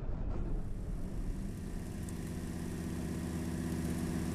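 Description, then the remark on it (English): A car engine runs steadily at a low, droning idle, a continuous rumble with a faint harmonic hum that stays even throughout, alone with no voices. “The yellow roadster slowed down up ahead.”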